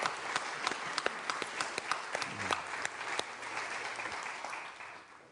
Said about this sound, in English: How about we have breath to praise the Lord, but how about we also offer up to Him a clap offering this morning of praise? Yeah.